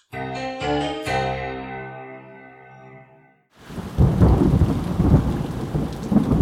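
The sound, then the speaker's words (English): A few ringing musical notes fade out, then a loud thunderstorm with lightning bursts in at the Double Triple Hotel: heavy, steady rain pouring down with deep rumbling thunder underneath, full for the last few seconds. “By the time we get to the Double Triple Hotel, Mother Nature was putting on quite a show. Thunder, lightning, the whole nine yards.”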